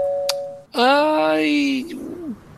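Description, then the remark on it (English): A doorbell gives a brief, steady electronic tone, followed right away by a louder drawn-out vocal sound that rises in pitch, like someone calling out. “You ring the doorbell a couple times.”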